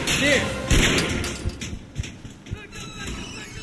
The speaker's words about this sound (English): I'll still hear them. They're still throwing furniture upstairs, right?